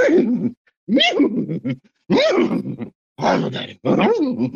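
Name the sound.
horse neigh sound effect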